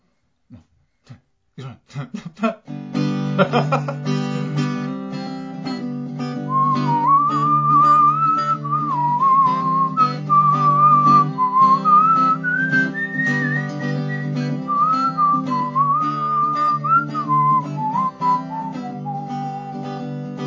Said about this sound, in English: The worst whistling ever.